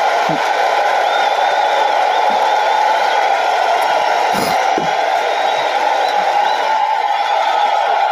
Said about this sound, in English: A round of applause for my fucking self.